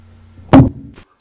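A microphone drops with a single loud, heavy thud, followed a moment later by a brief faint rattle, with no one speaking.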